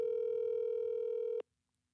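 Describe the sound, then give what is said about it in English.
A single steady electronic ringback tone from a phone call to a friend holds for about a second and a half at even loudness, then cuts off abruptly into near silence. “I feel like we should call Jimmy right now. Call him right now and see.”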